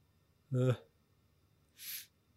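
human body sound, sneeze

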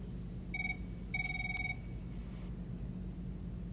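signal or alarm, telephone ringing

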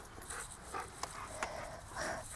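animal, dog panting

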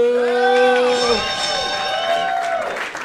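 crowd, audience applause and cheering

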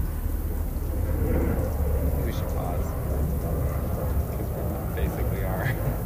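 vehicle, propeller plane flying overhead

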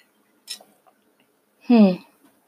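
food or drink, sipping coffee

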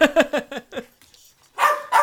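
animal, dog barking

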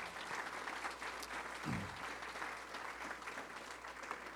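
crowd, audience applause

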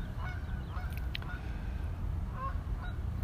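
bird, goose honking

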